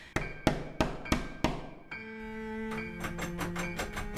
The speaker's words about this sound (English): Jane? Jane, open the door. Jane. Jane. Jane, open up. How he does call and pound. Jane, open the door.